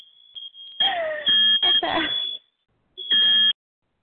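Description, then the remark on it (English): A shrill, high-pitched fire alarm tone sounds loudly in a house, mostly continuous with harmonic bursts, briefly stopping before one last piercing blast. Some voices and clatter mix in during the middle. “oh, here's my fire alarm going off in my house.”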